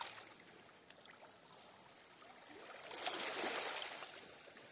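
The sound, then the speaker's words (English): Soft, steady wash of waves lapping at a beach shoreline, swelling gently into a fuller surge partway through before easing back. Quiet and continuous, with no voices. “Listening to the sounds of the beach, of the water, the waves.”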